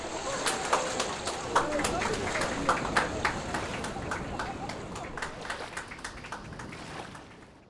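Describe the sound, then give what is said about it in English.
A group of people clapping, a steady patter of many hands with sharper individual claps poking through, continuing throughout before fading slightly at the end. “I mean, everybody's clapping at the end.”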